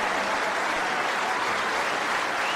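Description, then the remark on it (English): A capacity crowd at the Crucible claps and cheers in a dense, continuous roar of applause as Bradford's Joe Johnson defeats Steve Davis 18 frames to 12 in a world final, staying loud and steady throughout, with no pauses and no one speaking. “And Joe Johnson defeats Steve Davis 18 frames to 12 as the capacity crowd go completely mad.”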